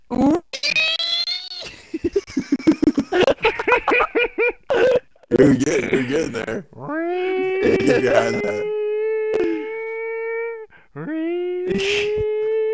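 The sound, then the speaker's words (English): A man's voice imitates a siren with long, wavering wails that rise and hold a steady pitch, broken by bursts of laughter and chatter, then a shorter wail near the end. “I want to hear your fucking siren noise. You're going to be the siren noise guy.”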